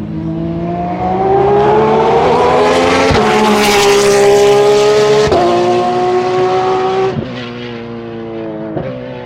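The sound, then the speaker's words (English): A car engine in a mono follow-by recording, loud and steady, its tone climbing through the revs and dropping abruptly about three times as the gears change, with no voices. “So the regular buys ended up in mono sounding like this. Here's a follow by.”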